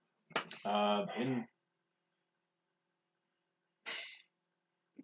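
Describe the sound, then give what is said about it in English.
A harsh, voiced cough bursts out, followed after a few seconds of silence by a shorter, breathy second cough and a tiny final catch of breath. No one speaks. “It's a good cough.”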